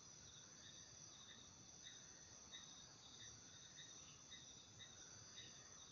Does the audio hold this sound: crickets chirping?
yes